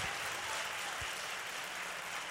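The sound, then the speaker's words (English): A church audience applauds in praise of Jesus Christ, a dense, continuous wash of many hands clapping at an even loudness throughout, with no voices standing out. “We've clapped for a lot of people, but now let's give Jesus Christ the greatest, highest praise.”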